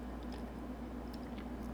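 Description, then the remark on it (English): Someone takes a quick sip of water, with soft, wet mouth clicks and a faint swallow over a low steady hum. No one speaks. “I gotta take a sip of water.”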